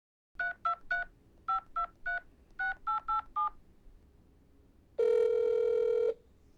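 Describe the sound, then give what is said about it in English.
A phone number is keyed in as ten crisp touch-tone beeps in groups of three, three and four, followed by a single louder, steady electronic tone lasting about a second. No one speaks. A woman in a car pulled over at the roadside is calling her father. “She pulled the car over, called her dad, and hit record.”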